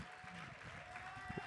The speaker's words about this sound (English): A round of applause.